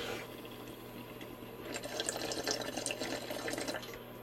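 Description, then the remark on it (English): Light rain sprinkling down, a soft, steady hiss dotted with scattered crisp drop taps that grow busier after the first second or so. No one speaks. “It's definitely sprinkling.”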